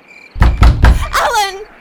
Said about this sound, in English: I heard him thump up the hallway and he opened the door.